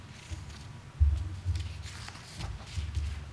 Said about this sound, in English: A lot of shuffling of papers.